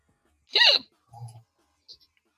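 hiccup

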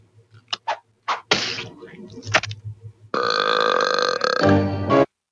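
loud belch

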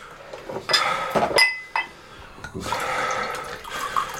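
drink being poured

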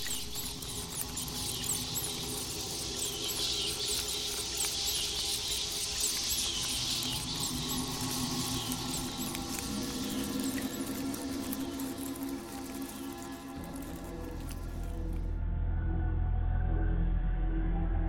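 rats scurrying inside walls

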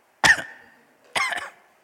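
cough

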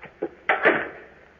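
outer door opening

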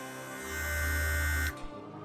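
buzzer sound effect

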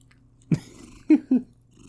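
cat purring

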